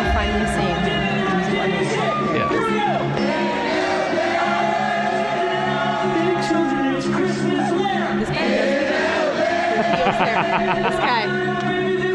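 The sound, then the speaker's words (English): A dense, noisy concert crowd at Red Rocks roars and chatters continuously, with a man's voice shouting out above the din at times, loud throughout. “It's like, who's this guy in the crowd like yelling towards us?”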